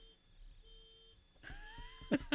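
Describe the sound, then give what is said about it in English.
A car alarm goes off at random: a thin steady electronic tone, then a louder shrill siren-like wail with layered pitches that rises and ends in sharp bursts. “it's Jay's car alarm. The car alarm just randomly goes off.”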